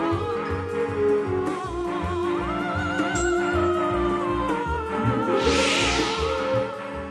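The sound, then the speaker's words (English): An orchestral theme with a sustained melody plays throughout. Near the end a bright, airy whoosh swells up and fades as the Starship Enterprise sweeps past in empty space over the music. The sound was added by Gene Roddenberry. “that whooshing being the Starship Enterprise.”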